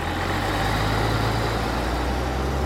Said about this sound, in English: Buses go by filled to the brim with passengers. Drivers honk at each other as they drive by.